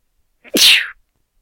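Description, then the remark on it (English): A single sharp, loud sneeze: a brief intake followed by an explosive, hissy burst that cuts off quickly, with silence before and after. “I need to sneeze.”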